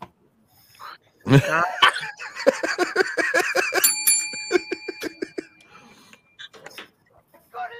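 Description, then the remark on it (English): A hand bell rings rapidly and repeatedly, a quick run of bright metallic dings whose tones linger and overlap before trailing off into a few scattered knocks. “That bell's got to be getting hot right now.”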